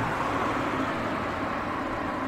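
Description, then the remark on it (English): A continuous, steady rumble of buses and cars moving right past along the main road through Anstruther, the largest village on the East Nook of Fife, a broad low engine-and-tyre roar that holds at an even loudness throughout, with no voices. “For hours on end, I saw barely a soul, and now, within seconds, there are buses and cars moving right past me.”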